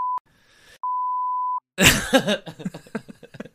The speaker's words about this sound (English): It's all just beeps to Baby Nation.